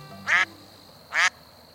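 ducks quacking

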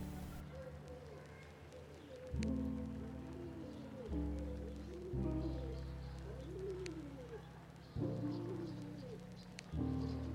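pigeons cooing

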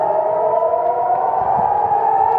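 air raid siren

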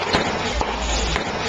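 fireworks crackling outside

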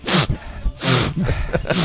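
sniffing

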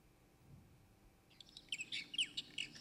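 birds chirping

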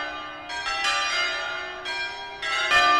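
church bells ringing

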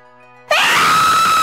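woman's scream

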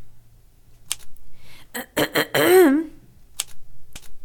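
typing on a typewriter

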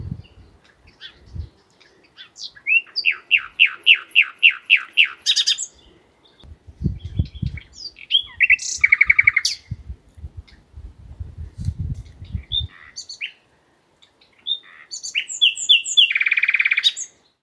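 nightingale singing

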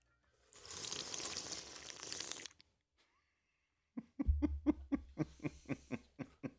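sipping

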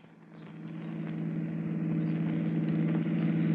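car engine running

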